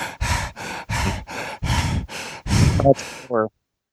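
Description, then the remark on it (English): Someone imitates the night-time panting of a fat beagle named Rudy with about nine quick, breathy huffs in a steady rhythm, fairly loud, ending in a short, higher voiced squeak. “He does this thing at night where he starts panting.”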